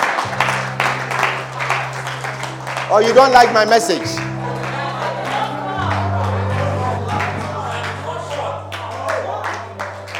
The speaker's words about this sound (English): Stand to your feet for a moment. Were you clapping for Jesus in that special way?